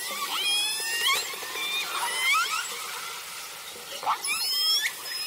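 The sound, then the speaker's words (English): Killer whale calls from a pod, picked up underwater by a hydrophone lowered overboard from a boat: bursts of high, squealing whistles and sweeping tones, some overlapping, over a steady watery hiss with no voices. “the captain threw a hydrophone overboard when we came across a pod of killer whales”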